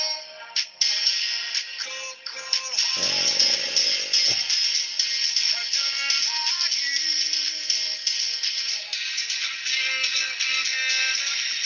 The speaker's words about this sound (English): Hey, I also want to say, while you're playing your terrible music over that terrible speakerphone right now. Is it that bad? Oh, yeah, your speaker's horrible.